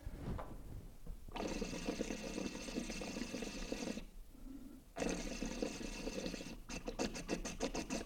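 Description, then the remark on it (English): Two loud bursts of dense, frothy bubbling as water runs through a micro diffuser, each lasting a few seconds with a brief pause between, ending in a rapid pulsing flutter. No one speaks. “Just makes the water extra frothy too, it's fun.”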